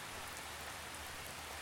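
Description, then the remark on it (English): Steady rain falls in a continuous, even hiss, fairly loud, with soft patter of drops on a surface throughout and no voices. “Here, you can admire what it may be the purest form of art, our very first inspiration, nature, the rain, the trees, the sun.”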